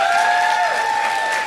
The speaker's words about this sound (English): Yeah, it's quite possible the people that got baptized are in this room or they're downstairs listening. So let's give them a hand one more time.